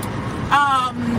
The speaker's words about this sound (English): I feel like I have to yell here over this noise, so I'm not good at this car yet. So for those of you who are wondering why am I talking like this, I have a Bronco. I got it in July.